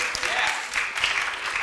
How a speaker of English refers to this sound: That ought to get a hand clap.